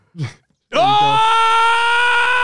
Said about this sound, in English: Oh! Whoa. I haven't screamed in a while.